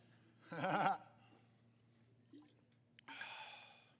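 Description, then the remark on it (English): Someone takes a drink: a brief voiced gasp, a faint wet click like a swallow, then a breathy exhale after the sip. No talking. “I need a drink after that one.”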